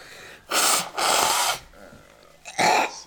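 Someone blows their nose into a tissue in three loud, wet honking bursts: two back-to-back, then a shorter one after a brief pause.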